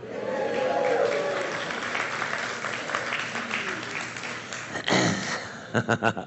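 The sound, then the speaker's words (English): An audience claps at the news that the speaker's youngest daughter has got a job, in a dense, sustained burst that gradually thins out, ending with a few separate, sharper claps trailing off at the end. “You're not driving her, so I don't know why you're clapping.”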